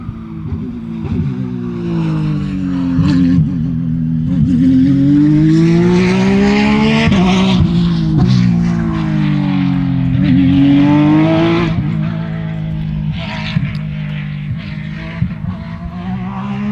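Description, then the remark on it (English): A race car engine roars loudly and steadily as the car passes a stationary set of microphones at very high speed, its pitch rising and dropping repeatedly through gear changes and downshifts, prominent the whole time with no voices. “Even though that's a stationary set of mics. And this car is going very fast.”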